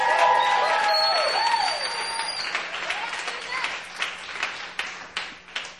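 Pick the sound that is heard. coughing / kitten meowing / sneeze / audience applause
audience applause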